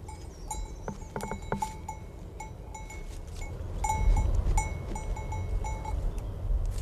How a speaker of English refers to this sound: And on the grassy slope above it, sheep graze, their bells ringing as they did in the days when Bernadette watched them.